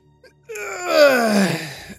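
A long, loud yawn from a single voice, sliding downward in pitch over about a second and a half before trailing off into quiet.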